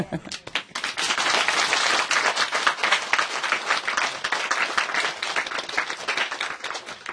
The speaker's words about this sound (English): We applaud them, huh? We should.